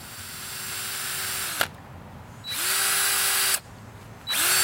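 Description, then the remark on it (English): A power drill whirs loudly in three long bursts, spinning up and biting into a red oak log each time as holes are drilled, separated by short pauses of quieter background. No one speaks. “So the first step is drilling some holes in the log.”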